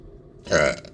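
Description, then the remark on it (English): A single loud burp erupts after a moment of near silence, with a rough, throaty rumble lasting about half a second. “Well, let me burp.”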